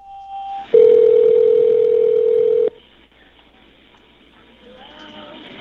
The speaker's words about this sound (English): It's in the background of the ringing, so you got to listen to the people talking. October 1, 2017. Because 911 calls record right away during the ringing.